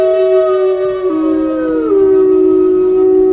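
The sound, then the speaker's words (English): A lone wolf named Takea howls in one long, loud, sustained note that holds steady and then slides gently downward, clear with no voices around it. “The tale of Takea, the lone wolf.”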